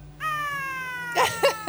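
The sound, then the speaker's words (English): A voice imitates the pained yowl of a Tonkinese cat whose tail is caught in a closing window: a thin, strained wail held for about a second, sliding slightly downward, then breaking into three harsh, rasping squawks. “She sounded like a window closing on a Tonkinese cat's tail.”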